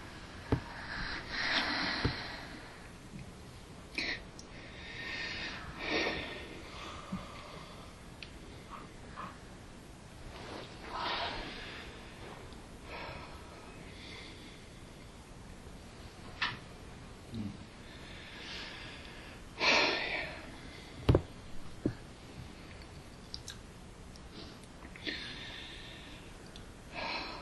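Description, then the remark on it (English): Heavy, forceful breaths repeat, with sharp snorting exhales and sighing inhales in an uneven rhythm over about half a minute, no talking. “Just keep breathing.”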